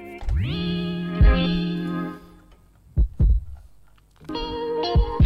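Deep, muffled heartbeat thumps, including a lub-dub pair, pulse slowly through a song intro, sounding alongside and between sustained, swelling synth chords.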